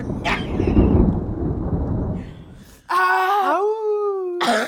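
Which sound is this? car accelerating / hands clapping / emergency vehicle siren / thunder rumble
thunder rumble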